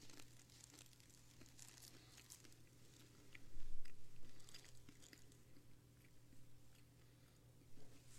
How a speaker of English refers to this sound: Okay, I don't usually have to chew in a microphone.